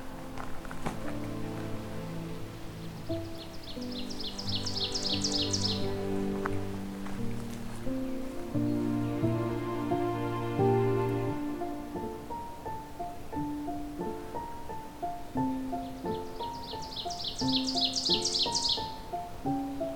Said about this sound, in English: There's an oven bird.